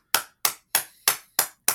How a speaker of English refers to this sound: let's start with a round of applause, huh?